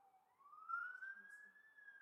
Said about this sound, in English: I hope that that siren stops. Isn't just like picking up on the... It seems like it's getting closer.